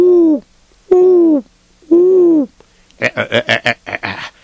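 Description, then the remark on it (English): An owl in a tree in a forest hoots three times, each call a loud, drawn-out, slightly wavering note with brief pauses between, followed by a rapid burst of shorter, choppier calls. No one speaks. “It's an owl on the tree.”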